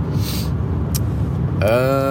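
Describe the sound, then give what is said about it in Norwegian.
Steady low road and engine rumble fills a car cabin while driving, with a brief hiss in the middle and a voice starting to speak near the end. “First off, jeg I bilen, riding.”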